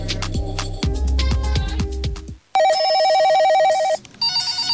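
A loud, warbling telephone ring trills steadily for over a second, then briefly pauses and starts again, following a short burst of music with no talking.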